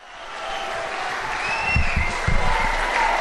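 A large rally crowd on its feet applauding and cheering as President Donald J. Trump comes out, a dense, steady roar of clapping that swells louder partway through, with a few whistles and shouts rising above it.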